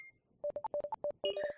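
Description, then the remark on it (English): Several phones' notification tones go off at once as all the phones light up with a single message, a quick run of short, bright electronic beeps that pile into overlapping chimes at the end. Fairly loud, with no one talking. “All of your phones light up.”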